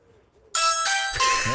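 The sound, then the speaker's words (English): A loud electronic chime from Darren Bent's Ring video doorbell rings out after a moment of near silence, sounding a quick sequence of bright, ringing tones that change pitch, each note overlapping the last. “It was Darren Bent's doorbell.”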